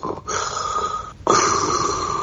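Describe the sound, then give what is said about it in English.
A voice imitates Darth Vader's heavy, mechanical respirator breathing as an imagined doorbell chime: two long, hissing breaths, an inhale and then a louder exhale, with a slight whistling tone and no talking. “Anytime anybody rings the bell, I would hear, like, Darth Vader's breathing.”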